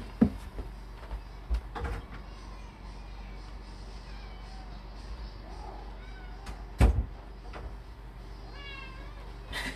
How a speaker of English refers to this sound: yeah, hold on, my cat's meowing.